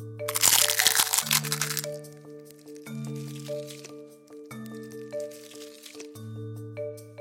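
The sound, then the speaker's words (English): A garlic clove is crushed under a cup: a loud crackling crunch, then softer squishing and crinkling bursts as it's worked flat, over a steady musical tone. “It makes a satisfying squashing sound too.”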